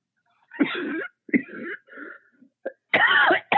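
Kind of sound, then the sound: human body sound, coughing and throat clearing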